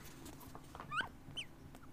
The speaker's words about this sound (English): He doesn't have a good squeaker on him. There we go.